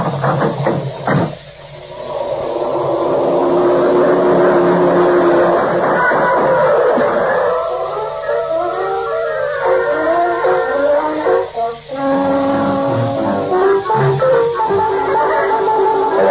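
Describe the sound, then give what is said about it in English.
A black sedan's twelve-cylinder engine roars loudly and continuously as it pounds past at speed, its pitch rising and shifting as it drives hard, powerful, with a brief thump near the start. “The black sedan pounded by on all 12 and Quinlan folded up like a playpen in a high wind.”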